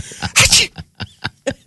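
A single sharp, breathy sneeze bursts out up close, followed by a few short, clipped vocal sounds in quick succession.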